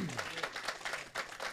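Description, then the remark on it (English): A brief burst of applause from a church audience, many hands clapping in a dense, steady patter at moderate loudness, with a voice briefly audible at the very start. “So many times as, amen, you can clap for that.”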